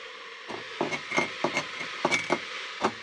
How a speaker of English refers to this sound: I just cracked my best American mug. Is it American? Yes. America. It's called Blue Bonnet, Texas.